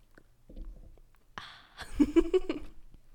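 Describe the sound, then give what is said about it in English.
Quiet sipping of a thick Starbucks hot chocolate that has cooled somewhat: a soft breathy slurp followed by a few wet gulping swallows and a brief hummed murmur, with no talking. “Let's take a sip.”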